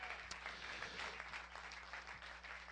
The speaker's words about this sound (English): Would you give them a hand clap as they come?